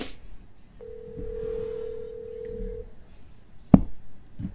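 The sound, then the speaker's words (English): A telephone tone plays as a call is placed, one steady electronic beep held for about two seconds over low background rumble, followed shortly after by a single sharp click. “I'm just going to give him a call.”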